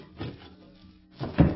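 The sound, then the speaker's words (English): A back door is unlocked and opened: a soft wooden rattle, a short pause, then a louder, fuller clunk as it swings open. No one speaks. “Back door.”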